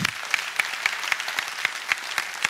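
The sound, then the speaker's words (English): An audience claps their hands together for God, sharp beats landing in a steady, fast rhythm over a dense wash of scattered applause, moderately loud, with no talking. “Give God a big hand clap if you got me.”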